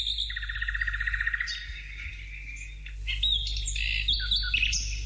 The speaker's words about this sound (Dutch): Ik hoor die vogels fluiten. Ja, ik hoor het ook via de telefoon hier, maar niet bij mij.